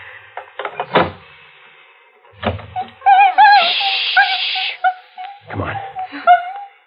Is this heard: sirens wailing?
no